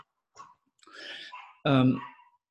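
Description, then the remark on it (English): Small rescue dogs bark in a few scattered, noisy yaps, then one louder, drawn-out yelping howl rings out before fading, with no talking over it. “she has these little rescue dogs, and they're the most terrific little chaps, but damn, they're loud when they get going”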